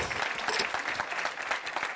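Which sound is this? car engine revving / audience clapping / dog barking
audience clapping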